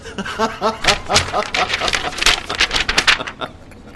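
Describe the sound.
Paper being crumpled up and torn: a dense run of sharp, crackling rustles lasting several seconds, fairly loud and irregular, with a brief murmur of a voice at the start.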